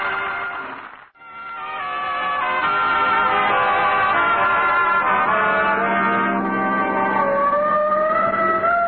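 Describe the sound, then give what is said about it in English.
A loud siren fitted to a car wails steadily, its rising and falling pitch sustained for several seconds after a brief gap at the start, dominating with no voices. “You'd better pull over, Walter. Why, Miss Brooks? Oh, the siren. Now, that's on our car.”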